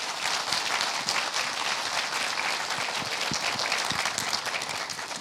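An audience applauds steadily, a dense wash of many hands clapping at an even, sustained loudness for several seconds with no voices over it.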